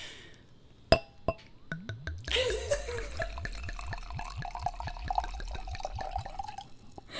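Two sharp glass clinks, then a drink poured steadily into a glass, the gurgling splash rising in pitch as the glass fills over several seconds.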